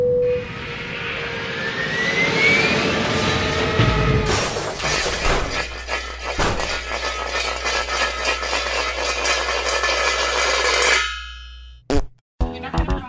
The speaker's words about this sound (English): I just died in the impact. Oh, so have I. And me too. I have as well. I died in the plane crash.